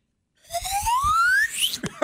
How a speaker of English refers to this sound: Oh, do you know what I can do? No, I can't do that. Watch this. I can blow a straw. Stand by. What? Ready?